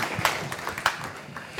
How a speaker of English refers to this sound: Would you put a big round of applause for our friend and brother